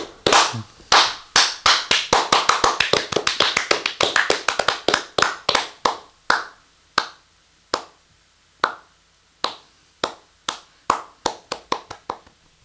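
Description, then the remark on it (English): Hand clapping applause, a brisk flurry of sharp claps that gradually thins out and slows into scattered, widely spaced claps before stopping, with no talking over it. “Let's applaud them.”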